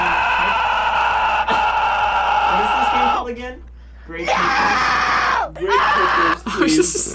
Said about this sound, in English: Okay, I need to find a better screaming sound effect.